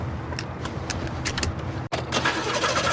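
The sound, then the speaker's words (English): A powerful car's engine cranks and turns over, a brief cut partway through, then the motor catches and runs with a fuller, steady rumble, with no talking. “What a car.”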